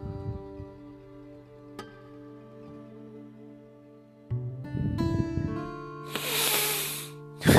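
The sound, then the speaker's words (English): A single strong sniff through the nose near the end to clear nasal breathing, a brief rushing burst of air over a steady humming tonal background, with no talking. “So, I guess I got my breathing back in my nose.”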